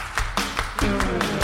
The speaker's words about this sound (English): And everybody clap your hands.